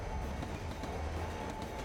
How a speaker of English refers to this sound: It's okay, they got a giant train.